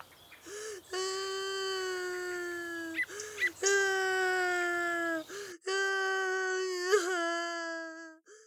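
A young boy, a neighbour's son who has fallen off his bicycle, cries in long, wailing sobs, three sustained tremulous bursts separated by brief catches of breath, loud with no other voices.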